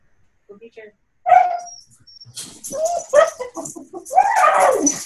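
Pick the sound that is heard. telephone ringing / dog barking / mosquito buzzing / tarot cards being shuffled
dog barking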